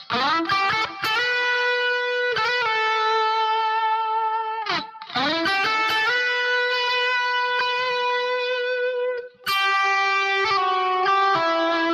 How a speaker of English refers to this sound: Let's throw some distortion and that delay back on there.